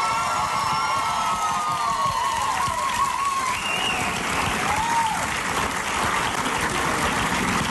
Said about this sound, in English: She's a great first lady, a great partner, a great mom, yes. And I hope you'll join me in giving her a round of applause.